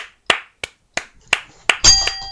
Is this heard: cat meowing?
no